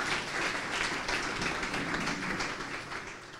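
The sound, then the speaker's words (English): Audience applause for a presenter after her talk on measuring wellness fills the whole stretch, a dense, steady wash of many hands clapping at once, holding an even loudness before easing slightly at the end. No one speaks. “And a big round of applause to Jennifer, please.”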